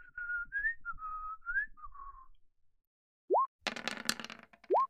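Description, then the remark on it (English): Someone whistles a short, lilting tune for about two seconds, clear. It is followed by quick rising whistle slides and a brief burst of noisy clatter, with no talking. “And the child is literally whistling.”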